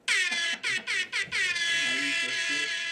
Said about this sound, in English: Let me give him an air horn, man.